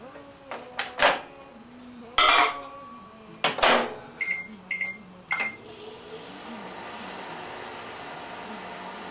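A microwave-type jar clinks as it is set into a microwave to be heated for about five seconds, the door thuds shut, and a few short electronic beeps follow before the oven starts a steady low hum.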